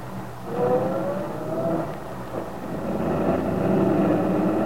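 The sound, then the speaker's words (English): Aunt Mary's truck revs and pulls away, its steady engine rumble rising in pitch as it drives off, heard alone at moderate volume without any voices. “Sergeant Bill Meade watched Aunt Mary's truck drive off.”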